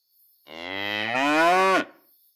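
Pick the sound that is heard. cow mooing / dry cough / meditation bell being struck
cow mooing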